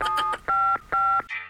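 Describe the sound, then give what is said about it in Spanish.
A short run of mobile phone keypad tones as someone dials the police: a few quick beeps followed by two longer steady dual-tone presses, clear, then a brief higher electronic tone as the call connects. “Llamemos a la policía. El celular. A ver, llamo.”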